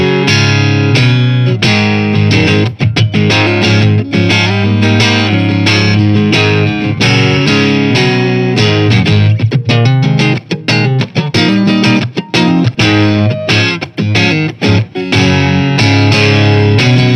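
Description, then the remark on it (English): An electric guitar played with the neck pickup alone selected, loud and steady for the whole stretch, with rich sustained chords and picked notes, a warm tone colored by effects, and no voices. “To the neck pickup on its own.”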